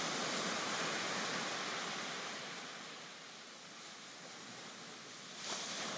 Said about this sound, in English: And you get to the shore where the ocean meets the sand. And you see little waves coming up and down, up and down.